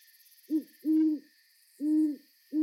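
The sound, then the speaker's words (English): An owl hoots at night outside a window of a home on Vancouver Island that backs onto a forest, in low, steady notes: a short hoot, a longer one, then another after a pause, with a faint high hiss of night insects in the background and no talking. “The other night, I woke up to the sound of an owl outside my window.”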